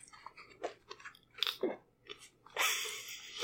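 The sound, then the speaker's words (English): During a game session, a person imitates one of several creatures sniffing around as it looks for something: several short, breathy snuffling bursts in an irregular rhythm, ending in a longer, louder hissing sniff. No words are spoken. “You hear this... like smelling sound as they are, it appears they are looking for something.”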